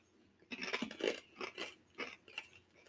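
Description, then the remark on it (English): Crisp crunching as a spicy, crunchy corn nugget snack is chewed, with five or six sharp bites in an uneven rhythm and no talking. “It's crunchy.”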